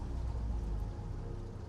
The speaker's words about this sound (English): One moment. Depressurizing chamber. And you hear the sounds of water and air just draining.